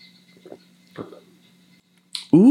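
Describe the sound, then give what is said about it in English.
Faint handling clicks, then a short, airy slurp as someone sips a brandy old fashioned cocktail with muddled fruit and a sugar cube, followed right away by a loud, appreciative vocal exclamation. “Here we go. Sips.”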